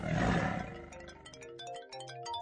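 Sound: tiger roar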